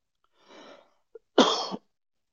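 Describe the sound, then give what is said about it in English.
A person coughs twice: a softer, breathy first cough, a brief pause with a small click, then a louder, harsher second cough. No one speaks. “So, I didn't mean to cough in your all ears, but we wrapped it up.”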